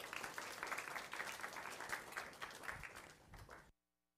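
An audience applauds steadily with a dense, crackling wash of many hands clapping at once, welcoming a guest pastor as he comes up, holding for several seconds before cutting off abruptly into silence.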